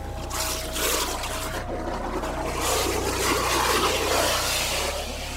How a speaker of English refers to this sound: Suddenly, Sean splashes up to the surface in a boil of water and air.